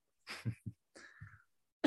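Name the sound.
coughing into the microphone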